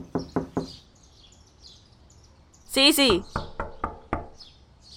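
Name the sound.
knocking on a door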